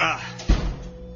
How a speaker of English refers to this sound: One moment, let me close the door.